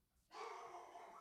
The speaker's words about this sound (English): My dogs are barking if you can't hear that.